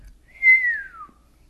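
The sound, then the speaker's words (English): A single soft, low whistle from a person slides downward in pitch over about half a second, fairly quiet, with no other sounds around it. “Driss glanced at what she had done and let out a low whistle.”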